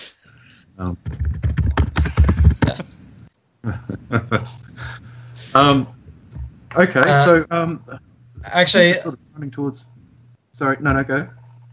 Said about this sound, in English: He sounds like a gorilla at the keyboard, just randomly smashing.